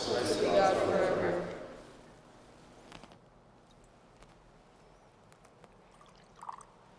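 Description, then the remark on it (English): A short pour of water into a chalice of wine fills the first second or so, a bright splashing trickle that fades, followed by quiet with a few faint clinks and taps. “By the mystery of this water and wine, may we come to share in the divine life of Christ, who humbled himself to share in our humanity.”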